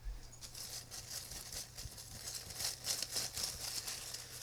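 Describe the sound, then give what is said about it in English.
Soft rustling and crinkling of paper as a thick folded slip is drawn from a hat and unfolded, a steady run of small crackles with no one speaking. “I have the piece of paper. It's folded over.”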